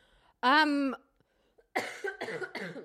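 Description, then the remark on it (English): Loud coughing: one strained, voiced hack, a short pause, then three quick harsh coughs in a row, with no talking. “Pardon me, I cough.”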